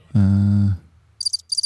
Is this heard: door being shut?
no